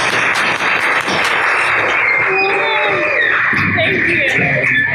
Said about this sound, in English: Round of applause.